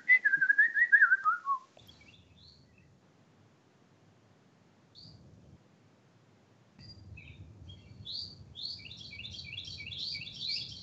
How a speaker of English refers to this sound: That's more like it. Okay. This is like the escape into nature version of the podcast. I love it. I'm not going to lie. I kind of dig the bird noises. We're on the edge of a temperate rainforest here. I kind of dig the bird noises for a summer show.